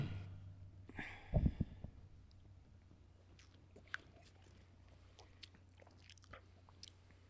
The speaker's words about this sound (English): All right, well, boys, I'm gonna go ahead and get that first sip.